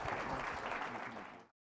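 Steady crowd applause, a dense patter of many hands clapping at an even, fairly loud level for about a second and a half before cutting off abruptly.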